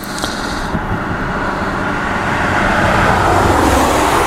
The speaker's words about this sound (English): Thinking this is the first car that's driven by for a while.